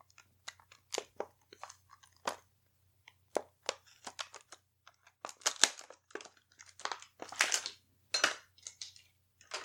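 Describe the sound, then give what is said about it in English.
Close, irregular bursts of plastic crinkling and small hard clicks as a brand-new set of skull dice is handled and unpacked, with brief pauses between the rustles and no talking. “Now excuse her while she tinkers and creates new dice.”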